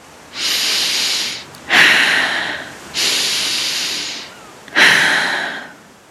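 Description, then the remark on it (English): Two full cycles of slow, deep breathing, with long airy inhales and exhales following one another steadily, fairly loud, and no talking. “Enjoying yourself and breathing to the sounds of the ocean.”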